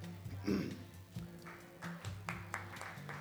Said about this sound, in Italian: Sì, sì, sono timidi di applausi qua, i camini inibiscono in qualche modo.